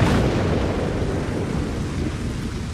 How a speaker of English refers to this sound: The beech tree, it's blazing. The lightning has struck it, Will. It has brought fire and change.